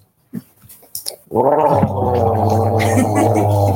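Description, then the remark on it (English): A person gargles water as a vagal toning exercise, a steady bubbling gurgle held for a couple of seconds after a few brief throaty sounds and a quick breath. “A bit of gargling with the old. Oh, I can gargle.”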